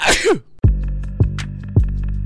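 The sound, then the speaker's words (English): A single loud human sneeze bursts out at the start, then gives way to low music with steady, deep rhythmic thumps. “It turns out it's hard to get someone to sneeze on demand.”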